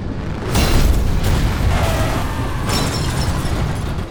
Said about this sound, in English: And Spearhead fights back. He just slammed hard into his competitors and made several of them tumble. Those rim spikes certainly came in handy.